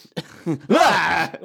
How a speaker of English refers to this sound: I had a cough. That's how I cough now. Yeah. I got it's something. It's a new thing. It helps clear out, like, you know, stuff.